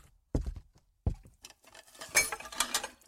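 Two dull thuds, then a drinking glass, just emptied, is dropped and clatters into a sink with a run of bright clinks and rattling that settles over a couple of seconds.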